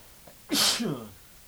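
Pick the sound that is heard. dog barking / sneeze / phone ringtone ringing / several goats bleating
sneeze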